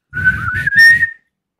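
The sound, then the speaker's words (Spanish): A person whistles a short melodic phrase from a rock song, about a second long, the tune rising slightly with a few breaks, fairly loud over some low breathy rumble. “Déjame ver si me sale el silbido de”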